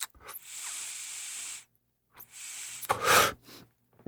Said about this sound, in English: So the nice thing about the chirp pen, you just inhale it to start, and then you put it on the concentrate. So let's give it a try.